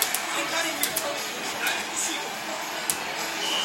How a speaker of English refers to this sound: Sarah Peebles caught the action at a video arcade at Tokyo's Akihabara train station.